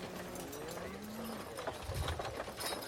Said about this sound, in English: These are good horses. One is a bit old, but well, can't have anything.